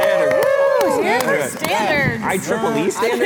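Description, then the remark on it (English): A few sharp, irregular claps of applause for IEEE standards ring out over several overlapping voices that talk and exclaim in rising and falling tones throughout. “Clapping for standards.”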